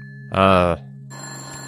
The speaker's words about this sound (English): I dialed something and it's ringing. Can you stop the ringing?